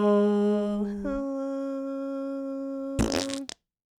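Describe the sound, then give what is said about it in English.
A fake fart noise, a long buzzy, reedy drone that dips in pitch, then a short wet sputter before it cuts off into silence. No one speaks. “That was a fake fart.”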